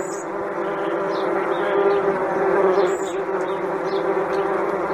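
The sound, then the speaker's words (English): Big, angry hornets buzz in a room after their container was knocked over, in a dense, continuous drone, steady and fairly loud, with layered wingbeat tones that swell and waver as insects move about, and no voices present. “There's bees, big old hornets in my room.”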